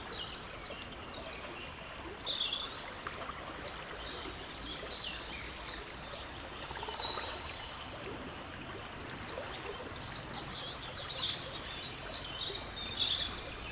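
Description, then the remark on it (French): A river flows gently with a steady, soft swirling wash of water, continuous and fairly quiet, while a few faint bird chirps sound now and then in the background. “Peut-être qu'il suffit d'écouter les remous tranquilles de la rivière.”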